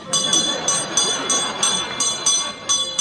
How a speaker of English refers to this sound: Because when I add this little kettle here, and when I add this little bell, it becomes a small business.